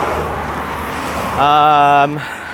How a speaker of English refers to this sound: There's this bit where you're walking next to what is a very main road, as listeners can probably hear. I mean, it's a car every like half a second. Another Ferrari. Could be the same one.